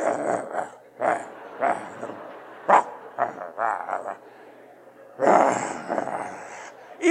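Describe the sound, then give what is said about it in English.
A person imitates an agitated dog with a series of short, gruff growls and snarling barks, fairly loud, in irregular bursts with a longer, harsher outburst near the end. “But I'll never forget this dog, because even though he would be over there doing what I said, he was always going like this.”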